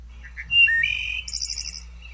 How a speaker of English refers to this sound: That's it. That's the wood thrush. Also, the wood thrush definitely sounds like a dial-up modem. At least part of it. Just a cross-section of a dial-up modem.